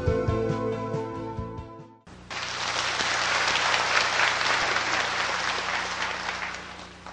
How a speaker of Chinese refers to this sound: 拍手赞叹自己啊，啊，那拍手习惯什么都拍，都不适合的时间啊。